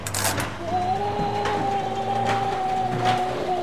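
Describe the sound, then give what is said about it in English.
The downstairs washing machine of the Hotel Addison on its spin cycle, door jammed, with a man trapped inside: a steady motor whine holding one high pitch over a continuous low droning rumble, after a brief noisy burst at the start. “The door's jammed! It won't open till the spin cycle's finished.”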